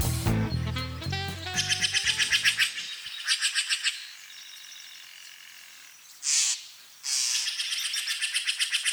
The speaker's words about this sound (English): We leave you this week just north of Marin County, along the banks of the Russian River. Now, there are many songbirds that call the Russian River home, and one day Ed Herman recorded as many as he could. Here's a sampling.